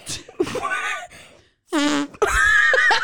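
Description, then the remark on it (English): A person blowing loud fart noises with their mouth, several buzzing raspberry bursts in a row with a brief pause between, the last one long and sustained. “okay, you can make fart noises.”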